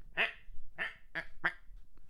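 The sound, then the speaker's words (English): A person imitates a duck with four short, nasal quacks in a steady rhythm, each about a third of a second apart, fairly loud with no other talking. “They'll like, you know, they'll just like waddle around and just...”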